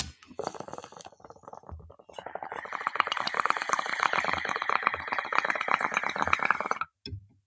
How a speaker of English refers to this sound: Yeah, so I'm just gonna smoke it. Get your pipe or bong, blunt, joint, vaporizer, whatever you're smoking out of it. Get ready to dab with me.